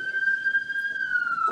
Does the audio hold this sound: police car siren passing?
yes